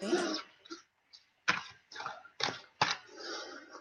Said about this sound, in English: So just bear with me and I'll just shuffle the cards and connect in with you